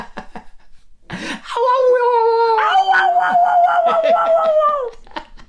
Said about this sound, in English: there's one guy in that audience howling like he's Tom from Tom and Jerry and he's just been burned